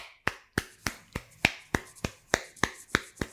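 Steady rhythmic clapping, about a dozen sharp, crisp claps roughly three per second, clear with no voices over them, as people clap for God at Christmas.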